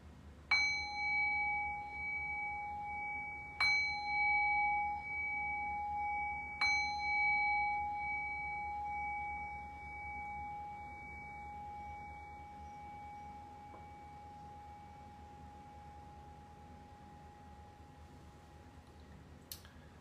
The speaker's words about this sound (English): So we'll make this transition now by ringing the bell.